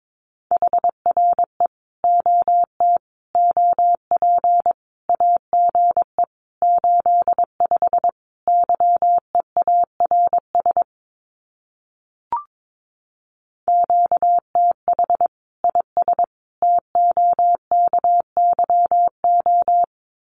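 Morse code sending common amateur radio QSO phrases at about 22 words per minute: a single steady mid-pitched tone keyed in rapid dots and dashes, grouped into words, with one short gap partway through and no voices.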